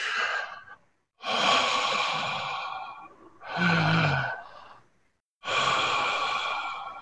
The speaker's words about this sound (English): every time you breathe, you feel like that's the only sound in this entire universe is you breathing.